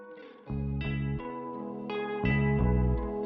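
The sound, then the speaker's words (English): A song played as outro music starts up after a brief quiet moment: loud, distorted, effects-heavy chords, likely guitar, change in a steady rhythm every second or so. No vocals yet, and no one talks over it. “All right, so we're going to play a song, guys, to take us out.”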